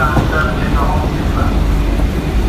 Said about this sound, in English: Luckily, we're getting off that train.